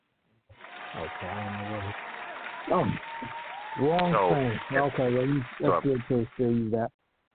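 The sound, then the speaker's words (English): A steady wash of applause runs for several seconds, with voices calling out and cheering loudly over it before everything cuts off abruptly. “Let me throw some claps on it for that.”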